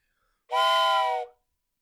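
A single loud whistle blast lasting nearly a second, a steady, bright multi-toned shriek that starts abruptly and cuts off cleanly, with no talking around it.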